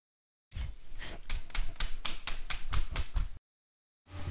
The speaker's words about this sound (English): Stop tapping that!